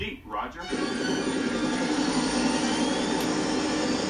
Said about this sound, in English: Copter flying low.